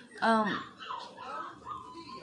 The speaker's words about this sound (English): I keep stopping and coming back to this because, like, the puppies keep crying and I don't know what they want. So I went and... They're still crying. But I went and had a talking to with them.